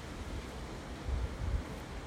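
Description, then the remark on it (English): Steady, strong wind roars and buffets at the place where someone is recording, with heavier low rumbling gusts swelling midway through; no one speaks. “Whoa, it's actually got really windy where I am right now recording.”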